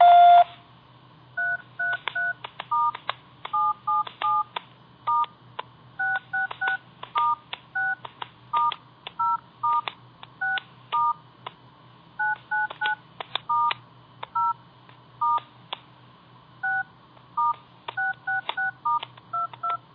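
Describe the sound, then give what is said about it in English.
A single beep, then a long run of short telephone keypad DTMF tones pressed in quick, uneven bursts as a new presence message is keyed in by phone, clear, with no one speaking. “After the beep, key in your new presence message.”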